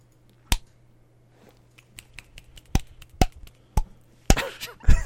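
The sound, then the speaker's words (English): A series of sharp, irregular slapping claps, like one buttock cheek clapping, with a loud smack first, a scatter of softer pats, then a burst of harder slaps at the end. “What's the sound of one cheek clapping?”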